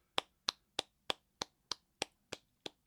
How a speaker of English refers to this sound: Very, I gotta give you golf claps.